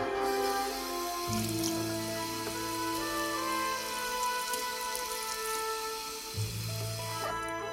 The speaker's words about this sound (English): I splashed my face with water.